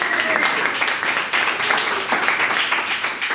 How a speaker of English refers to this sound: our estimation of you has gone up a notch because you got two smaller questions right. Big round of applause.